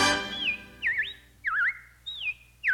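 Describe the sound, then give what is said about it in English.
Robins singing: a series of clear, warbling whistled phrases, each rising and dipping in pitch, repeated about five times in a steady rhythm, fairly loud with no voices. “Well, the robins are back. That's a sure sign of spring.”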